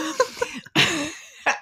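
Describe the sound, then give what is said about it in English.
A voice imitates a deep, throaty cough with an Australian accent: a couple of short rough bursts, then one long harsh hacking cough, followed by a final brief cough. “It was a deep, throaty thing. It had an Australian accent.”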